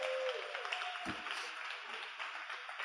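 Steady audience applause, a dense patter of many hands clapping at even loudness throughout, with a faint tone fading out early on.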